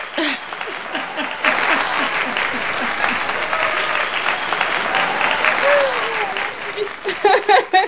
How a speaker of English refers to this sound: I'm going to cause, like, let's go ahead and clap.